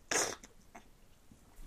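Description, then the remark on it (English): A sudden harsh, explosive cough bursts out loudly, followed by a couple of softer, shorter coughs and a final sharp one, with no talking, after a slurp of hot chocolate went down the wrong way. “I shouldn't have done that. That went down the wrong hole.”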